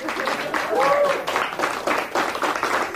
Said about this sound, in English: And everybody that listens to Lost Podcast, you know how much he supports the Lost Podcast fan community. And so, Jorge Garcia, we all applaud you for tonight's episode, everybody.